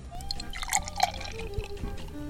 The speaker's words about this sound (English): It is perhaps the dribbliest can I've ever experienced. They may as well have put a hole in the lip where you pour from.